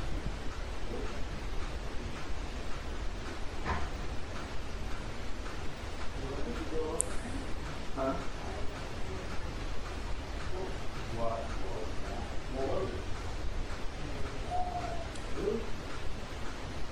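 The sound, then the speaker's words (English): A hollow, breathy owl-like hoot blown through cupped hands as a hand flute, brief and fairly soft, over steady background hiss with faint muffled voices. “Yeah, that's a hand flute.”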